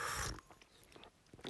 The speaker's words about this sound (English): Need a little sip of my tea, considering I wasted half the show making it.